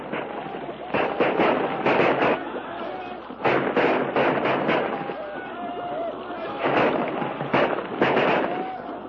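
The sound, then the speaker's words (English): Loud volleys of rifle gunfire crack in three rapid clusters, each a string of sharp overlapping shots, with shouting voices and commotion running underneath throughout. “Use your rifles, men.”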